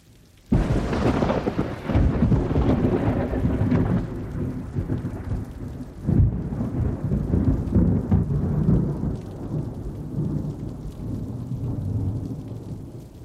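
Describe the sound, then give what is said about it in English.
An afternoon thunderstorm: after a vivid flash of lightning, a sudden loud crack of thunder bursts out and rolls into a long, deep rumble, with heavy rain pouring steadily underneath and a second thunder surge partway through. “A vivid flash of lightning bursts forth, and then a crash of thunder, and down streams deluging rain.”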